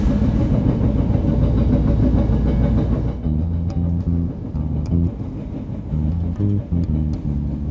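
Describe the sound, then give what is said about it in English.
Inside a moving red line metro train heading downtown: a steady, loud low rumble fills the car, then shifting motor tones hum and step in pitch as the train runs on, with no one talking. “I'm on a red line train heading downtown.”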